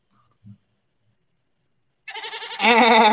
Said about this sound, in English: …, why don't you give us a goat for that one?